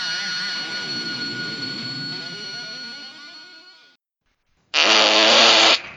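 A long, loud, sputtering fart noise with wavering pitch runs for about four seconds, then after a short silence a second harsh, buzzy blast follows for about a second, with no talking.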